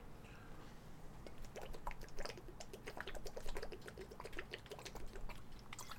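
Water is poured into a glass for drinking, making a quiet run of small trickling splashes and clicks that continue steadily for several seconds with no talking.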